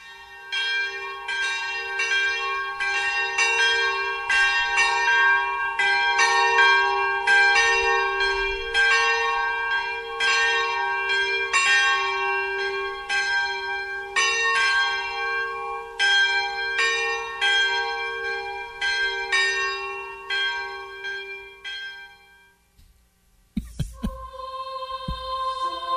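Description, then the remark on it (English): Church bells peal continuously for about twenty seconds, loud and resonant, their overlapping strikes forming a rich ringing cascade before stopping abruptly, followed by a brief different sound. “Just the bells went a little long.”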